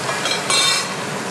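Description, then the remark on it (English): Chicken sizzling in a frying pan as it browns to crispy edges: a steady, dense crackling hiss that swells briefly brighter midway, with no voices over it. “Really sizzling.”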